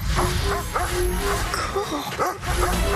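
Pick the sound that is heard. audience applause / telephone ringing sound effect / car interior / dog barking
dog barking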